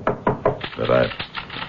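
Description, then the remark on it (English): Three quick, evenly spaced knocks on a door ring out clear, followed by a voice speaking indistinctly with a few more soft taps underneath. “there is a knock on the door.”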